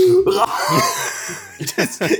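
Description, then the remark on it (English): A voice imitates a dry, raspy cough as if coughing up dust, with a few short throaty bursts and some strained vocal noise, fairly loud. “coughing up dust.”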